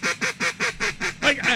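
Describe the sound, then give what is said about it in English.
A duck call blown by a former world champion duck caller, a quick, steady run of about eight nasal quacks, loud, each burst evenly spaced with no voices underneath. “Devlin Hodges, of course, was a world champion duck caller 10 years ago. Now, here is his duck call.”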